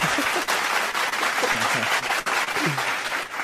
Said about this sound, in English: Did I just hear a fucking clap? Yes, we've upgraded in here.